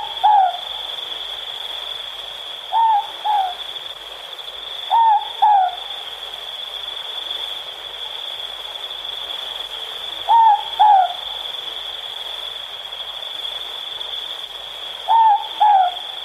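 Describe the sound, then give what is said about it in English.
A morepork (ruru) owl of New Zealand, used as the RNZ National bird call, calls its two-note 'more-pork' hoot five times at irregular intervals, clear, over a steady high insect-like drone in the night background. “The Moorpork.”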